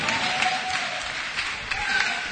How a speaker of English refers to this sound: Clap your hands for the brother.